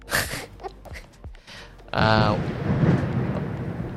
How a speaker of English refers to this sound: Oh wow. What's that sound? Oh, I think it's literally thunder behind us. Okay. Well, typical Singapore weather.